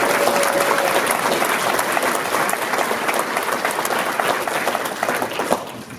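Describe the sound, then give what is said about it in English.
A crowd at a forum breaks into loud, steady applause for Mark Meckler, a dense wash of many hands clapping that holds for several seconds before starting to fade at the end. “So a big round of applause for our friend Mark Meckler.”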